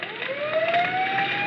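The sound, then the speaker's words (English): A fire siren sound effect for a stage play wails steadily, its tone sliding slowly upward as it rises, fairly loud and sustained over a rumbling background of traffic-like noise, with no one speaking. “Now the fire siren.”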